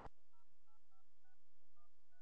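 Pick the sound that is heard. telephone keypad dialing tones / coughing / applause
telephone keypad dialing tones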